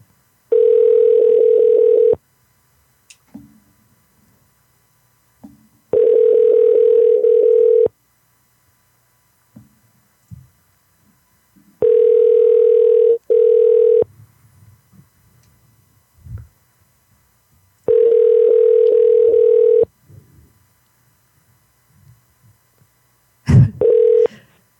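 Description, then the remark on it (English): A phone call rings out: four steady, mid-pitched tone bursts of about two seconds each, spaced evenly with quiet gaps and faint handling noises between, ending in a sharp click as the line picks up. “Depending on how this call goes, I will get into the background, which is pretty dicey.”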